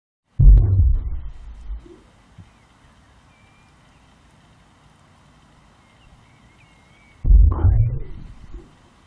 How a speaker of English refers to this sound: Let's start with the heartbeat of a whale.